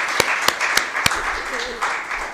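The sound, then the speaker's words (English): An audience at an evening church service applauds for the Lord and Savior, a steady, dense wash of clapping punctuated by a few sharp, louder claps, with faint voices murmuring underneath. “How about a round of applause for our Lord and Savior tonight?”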